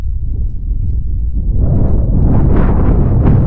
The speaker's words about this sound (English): Jesus Christ, it's windy. I'm trying to record a podcast, The Wind.